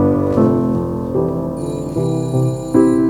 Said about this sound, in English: An authentic 1969 era GPO telephone ringing in the background.